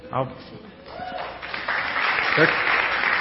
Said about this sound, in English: They're clapping for you putting up with that.